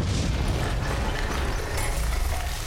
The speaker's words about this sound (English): Oh! Something blew up the wall!